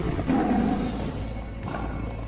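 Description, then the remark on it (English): A loud, sustained roar of a summoned giant sabertooth tiger fighting machine, deep and growling, swelling early and then rumbling on for a couple of seconds with a second rasping surge near the end, no talking. “He asked, but was answered right away as she summoned the Sabertooth Tiger Zord.”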